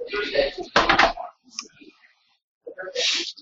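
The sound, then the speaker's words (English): A door is quickly swung shut with a sharp clunk near the start, followed by faint shuffling and a brief burst of muffled noise a couple of seconds later. “All right, I'll close the door really quick.”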